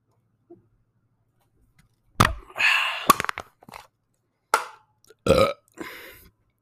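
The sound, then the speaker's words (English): A run of loud burps after chugging a can of beer: after a quiet start, a long rumbling belch, a few sharp clicks, then several shorter burps in quick succession, with no talking. “Sometimes you just gotta yug a beer. Just slam one, dude.”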